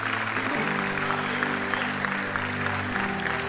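A church audience claps steadily over a sustained organ or keyboard chord, the applause forming a dense, continuous patter that stays at an even loudness throughout.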